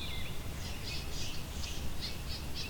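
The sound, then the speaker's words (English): A swamp sparrow's slow, ringing trill: a steady series of about seven bright repeated notes over a constant low rumble of background noise. “So it's that kind of ringing trill that is the swamp sparrow.”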